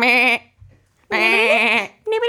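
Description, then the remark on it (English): A human voice imitates a sheep making alarm clock noises, letting out three loud, wavering bleats in quick succession, each a sustained nasal "baa" with short pauses between, clear with no other sounds. “I'm a sheep making alarm clock noises here.”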